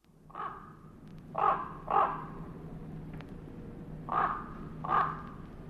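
Five hoarse raven calls come in loose clusters over a steady low rumble, each croak short and harsh and moderately loud, with brief pauses between groups.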